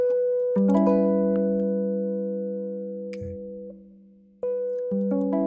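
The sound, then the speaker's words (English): Sustained C sharp minor 7 flat 5 chords ring out on a keyboard-like instrument, with the top note holding steady while the lower notes shift downward in a few steps before a fresh chord is struck near the end. “And then we go on to C sharp minor 7 flat 5. So check this out. So this top note can remain the same. These lower tones can kind of drift down.”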